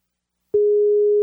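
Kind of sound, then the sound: signal or alarm, outgoing call ringing tone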